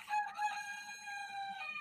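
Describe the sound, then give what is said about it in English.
A rooster crows once at 10 o'clock at night in a long, sustained cock-a-doodle-doo, loud, with strong harmonic tones held for nearly two seconds and no talking. “Dude, that chicken's like, why the fuck did you eat my dinner?”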